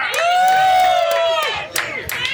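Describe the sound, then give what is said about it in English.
A crowd cheers and whoops loudly, with a long high-pitched shout rising above the noise, then scattered bursts of clapping and cries as the cheering continues. “Give it up.”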